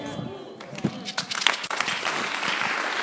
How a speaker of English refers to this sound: I'm waiting for you to clap better. And I'll tell you. I say, I'm waiting for you to clap better.